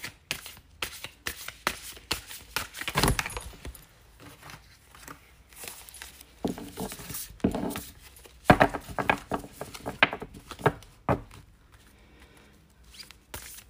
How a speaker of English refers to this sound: I am going to start this episode with a quick affirmation card pull. I've already done my cleansing ritual, so I'm just going to shuffle real quick and see what three cards come through, and hopefully they will resonate with some, if not all of you.